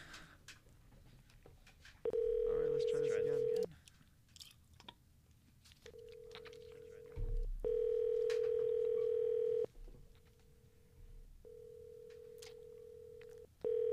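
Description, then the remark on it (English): A phone rings out on an outgoing call, a steady tonal ring repeating in long bursts with short pauses between, fairly loud, with faint background noise and no talking. “Pick up the phone.”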